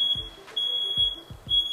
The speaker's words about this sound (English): At least the fire alarm went off, right? I'm grateful for that. I'm grateful when this is gonna stop.